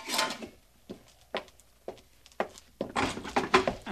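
A wooden door being worked open: a handful of sharp, irregular clunks and knocks, then a longer rattling, scraping burst as it swings. No voices.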